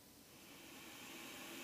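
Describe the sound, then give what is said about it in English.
A steady wash of radio static from an open radio frequency playing its own feedback as a spirit box hisses continuously across the whole stretch, soft but unbroken, growing slightly louder toward the end, with no voices or other sounds. “So, if you hear static or white noise, don't be alarmed.”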